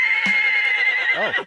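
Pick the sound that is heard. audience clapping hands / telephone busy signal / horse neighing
horse neighing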